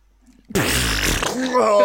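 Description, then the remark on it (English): After a short silence, a loud fart sound effect bursts in and keeps going, a rough, sputtering rumble with some buzzy tonal squeaks, lasting over a second. “Would you say it deserves a shitting noise”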